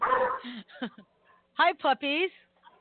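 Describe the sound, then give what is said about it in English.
Two puppies barking at someone who came to the door, in a quick series of sharp, high yelping barks, fairly loud, with brief gaps between bursts and no talking. “Sounds like a big puppy, too. Yeah, sorry. Two puppies. Yeah, sorry. Somebody came to the door.”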